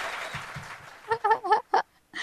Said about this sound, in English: Let's just give a round of applause right there. Might as well just give it up. You know, it's right there.